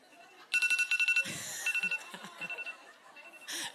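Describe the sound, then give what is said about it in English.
A phone alarm goes off during a church talk in rapid, high-pitched electronic pulses, beeping in repeated bursts with short pauses between them, while murmuring voices and shuffling sounds rise beneath it. “This is a picture of the new, oh, you set your alarm for real.”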